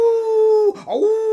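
A pack of dogs howling in a long, steady, loud wail that briefly breaks and wavers in pitch midway before settling back into the same sustained tone, with no talking.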